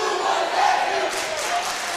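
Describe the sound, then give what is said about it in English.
The Bird Squad student section at a basketball game between Marshall and the Cardinals chants loudly and steadily in unison, a dense roar of voices with rhythmic shouted swells, sustained throughout with no other sounds standing out. “You heard the Bird Squad, the student section chant.”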